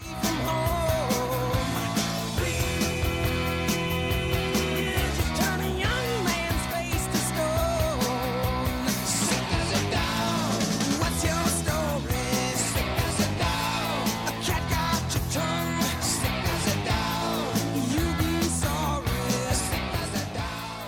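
A loud a band's rock song plays without pause: dense full-band sound with driving drums, distorted guitars and sustained melodic lines, staying at a steady, high volume throughout.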